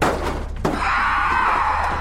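The back door of a van slams shut with a single loud thud, followed by a sustained high-pitched ringing tone that lingers over a low rumbling background.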